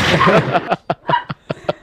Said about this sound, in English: I was looking for the gunshot. Now I know where the gunshot is.